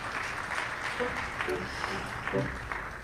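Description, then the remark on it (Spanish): A church audience claps together in praise of God in a steady, dense wash of applause that continues for a few seconds, with faint voices and brief murmurs mixed in beneath the clapping. “Podemos dar un aplauso a Él por todo lo que ha hecho en nuestras vidas.”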